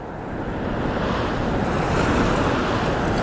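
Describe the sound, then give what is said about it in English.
A steady, fairly loud wash of rolling sea waves, a continuous broad roar of surf with wind-like hiss and no distinct breaks, heard alone without any voices. “And the people who peered over the newt fences only saw an infinite and indifferent rolling sea.”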